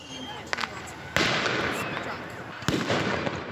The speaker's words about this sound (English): It looks like a war zone. 400 young people lighting off fireworks in Tawasin, aiming explosives at each other. Seeing chaos. You're seeing people intentionally trying to injure other people.